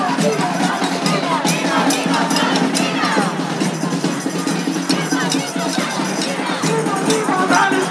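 A large outdoor crowd of about 3,000 people at a street march for a ceasefire in Gaza in New York, beginning at Union Square Park in Manhattan on Martin Luther King Jr. Day; a dense, steady wash of many voices with shouts and cheers rising here and there, loud and continuous throughout.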